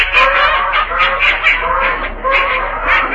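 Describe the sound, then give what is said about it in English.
Hundreds of ducks at a duck pond in the early morning quack together in a loud, dense chorus. The overlapping calls rise and fall continuously with no pauses and no one talking. “Oh, boy, get a load of those ducks.”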